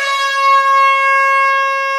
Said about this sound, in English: One of the moments that I'll never forget is Sarah Hosking, the absolute animal she is, scaring the life out of Harriet, and it was with an air horn.